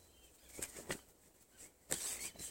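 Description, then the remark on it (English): Birds flap their wings in quiet, brisk flutters: two short bursts, then a longer, busier flurry toward the end, with faint high chirping mixed in and no voices. “And there are some also birds joining us today.”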